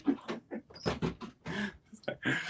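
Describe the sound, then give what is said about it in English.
Dogs in the room let out short, uneven whines and yips in quick bursts, with a person's voice mixed in underneath. “Yeah, I'm going to close the door for these dogs.”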